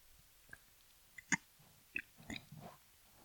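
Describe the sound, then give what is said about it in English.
A few soft, wet mouth sounds very close to the microphone, quick clicks followed by a brief slurping sip, with quiet pauses between them and no talking. “I heard you sip a little bit.”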